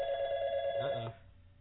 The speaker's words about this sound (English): were you expecting a phone call?